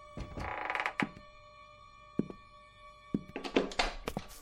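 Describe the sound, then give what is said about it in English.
Someone jimmies a door lock with a lockpick: bursts of scratchy metallic rattling and scraping, broken by a few sharp clicks and dull thunks, with quiet pauses between the attempts. “Somebody's trying to jimmy the door.”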